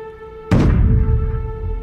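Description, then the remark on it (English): A single deep, blunt thud against the hallway door of a hotel room breaks in suddenly over a faint steady hum, then trails off into a sustained low rumble. No one speaks. “A deep, blunt sound boomed against the door to the hallway.”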